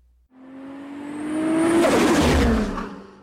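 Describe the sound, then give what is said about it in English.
Racing car engines rev higher and higher, swelling into a loud, roaring rush as the cars hurtle side by side down a hill, the pitch dropping as they pass, then fading slightly. No voices. “No, they're still hurling down the hill.”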